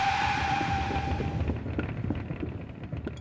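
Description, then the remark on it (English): A car skids to a sudden stop with a high tyre squeal over loud, rushing noise for about a second and a half, then gives way to rough rattling and clunking as it jolts to a halt; the manoeuvre makes the car lose a tyre. “That manoeuvre just caused us to lose a tyre, sir.”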